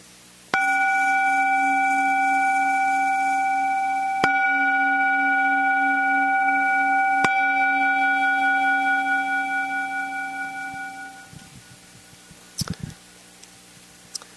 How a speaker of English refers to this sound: And we'll hit a little gong, and then I'll just share a couple announcements.